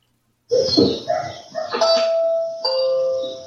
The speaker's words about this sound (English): You can see him on camera ringing the doorbell, waiting for the homeowner to come out.